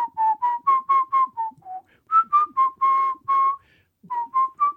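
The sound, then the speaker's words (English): A person whistles a short, bouncy tune of quick, clear notes around one pitch, in three bursts separated by brief pauses, with no talking. “I could whistle in the meantime.”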